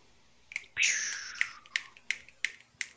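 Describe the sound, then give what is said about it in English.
Six or so crisp finger snaps fall in a steady, slightly uneven rhythm. A breathy hiss briefly swells between the first two, and there's no talking. “Snap, snap, snap, finger snaps.”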